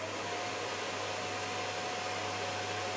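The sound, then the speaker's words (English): A cordless vacuum cleaner runs steadily and fairly loud, giving a constant rushing whoosh of air with a faint high motor whine and a low hum underneath, no speech. “Now that to me, that's not normal vacuum cleaner noise.”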